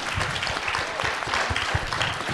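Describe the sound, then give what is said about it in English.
A crowd applauds a panel steadily, a dense, even wash of many hands clapping at once with a few sharper individual claps standing out, holding at a strong, constant level throughout. “How about we give the panel a big clap?”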